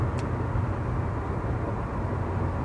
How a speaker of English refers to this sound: I'm sitting in my car right now, so, you know, it might be a little distorted. It might be a little extra sound. I'm driving in my car, and I just had a thought.